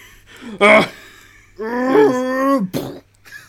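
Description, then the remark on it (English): A voice imitates the gurgly roar of a Shambler zombie: a sharp throaty burst, then a longer strained, rasping growl with a wavering harmonic pitch, ending in a short gasp. “I hated every time I heard one of their like gurgly like roars off in the distance.”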